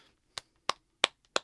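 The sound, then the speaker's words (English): A quiet golf clap: four soft, sharp hand claps in a slow, even rhythm, each a crisp snap with no voices alongside. “I'm just giving you golf claps now.”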